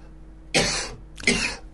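A man coughs twice in quick succession, two harsh, breathy bursts close to the microphone with a short pause between them, and no talking.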